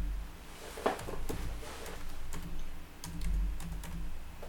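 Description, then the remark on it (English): Irregular bursts of computer keyboard typing, moderately loud, with quick clusters of key clicks and brief pauses over a low background hum, as a person types while setting up an email account. “I'm sure people who are listening to me typing can probably figure out what my password is now.”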